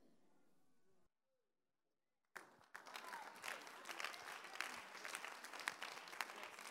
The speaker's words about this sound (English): Those of you are not clapping, you are not getting what I'm preaching.